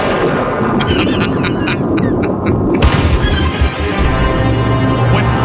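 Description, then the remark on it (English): A loud, rumbling thunderclap sound effect, a dense low roar with crackling bursts that swells and rolls on for several seconds without fading away. “When you play that mocking thunderbolt sound, that horrific sound, you're not just mocking me.”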